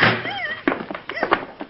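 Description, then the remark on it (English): A door is shut: a brief squeaky whine, then a solid thunk followed by a couple of quick knocking bumps as it settles closed, fairly loud against a quiet background. “I'll shut this door.”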